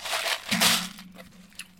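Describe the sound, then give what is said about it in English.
Chewing of gummy candies that take a lot to chew: soft, sticky, squelching mouth noises in uneven bursts, loud, with no talking. “Sorry, these do take a lot to chew, though.”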